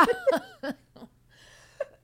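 A raspy smoker's cough: four quick hacking bursts in an uneven run, then a short pause and one last rough cough. No talking.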